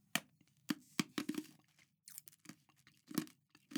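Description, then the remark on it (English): Ice cubes being crunched between the teeth, a run of sharp, crackly bites in an irregular rhythm with brief quiet gaps, fairly quiet overall and with no talking. “Ice crunching there.”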